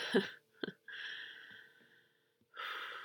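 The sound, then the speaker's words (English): A big yawn: a short voiced groan and a quick catch of breath, then a long, airy exhale that gradually fades out, followed by another breathy inhale after a brief pause. “Big yawn.”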